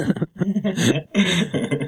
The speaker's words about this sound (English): I always like burp into it and then realize that I burped into it right afterwards. Right into the hot mic.